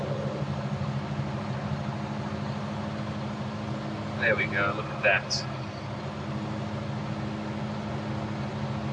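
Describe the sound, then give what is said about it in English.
A car with a 385 cubic inch, 132 horsepower engine accelerates under full throttle to pass other vehicles, heard from inside the cabin: a continuous low rumble with road noise throughout, and a voice speaks briefly over it partway through. “See, the really car does like to perform when you put your foot down there.”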